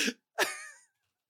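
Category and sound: human body sound, throat clearing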